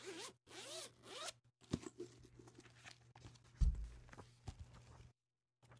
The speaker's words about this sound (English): So have this notebook. Listen to it. It has a zipper.